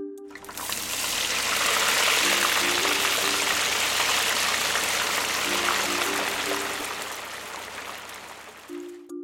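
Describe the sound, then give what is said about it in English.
A steady sizzling hiss, like food frying in a hot pan, runs continuously for about nine seconds at a fairly loud, even level with no voices. “It makes a sizzling sound, like something is really, really hot and sizzling.”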